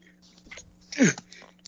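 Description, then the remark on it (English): A single sneeze: some soft breathy sounds build up, then one sharp, loud burst with a falling voiced tone, followed by quieter breaths. A steady low hum runs underneath throughout. “Sorry, had a sneeze.”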